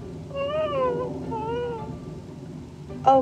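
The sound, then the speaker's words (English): A cat meows several times in a drawn-out, wavering way, ending with a short, sharper meow. Low background noise runs underneath with no speech. “I once read about this awesome cat who once caught a snake. Is it true that you caught one too?”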